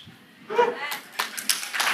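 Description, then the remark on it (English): Scattered audience clapping, a few loose claps at first that grow into a steadier patter of applause, following a brief burst of voice. “Those who didn't clap now, meet me later.”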